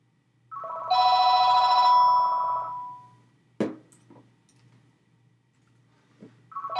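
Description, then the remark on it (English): A telephone rings loudly during an interview for about two seconds, a bright electronic trill that fades out. A sharp click follows, then the ring starts again right at the end. “Can someone get this phone?”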